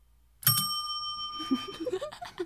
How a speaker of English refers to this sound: Where's the bell? That was really good. Ding! Hold on. Let me find the bell. Oh, it's all the way over there.